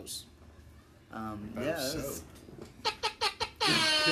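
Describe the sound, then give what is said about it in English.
Four quick, sharp air horn honks in a row, followed right away by a long, loud blaring blast, after a stretch of squeaky, voice-like sounds. “Look, we might not have the recording equipment this time, but we still have the air horn, so that's the most important part.”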